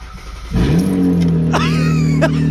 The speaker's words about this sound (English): let you guys hear what my car sounds like without a catalytic converter in it